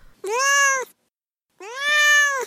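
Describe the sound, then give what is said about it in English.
Duarte, a domestic cat, meows twice, two long, drawn-out calls separated by a short pause, fairly loud with no one talking. “All right, now it's time for Duarte's Corner, where my cat Duarte weighs in on this book.”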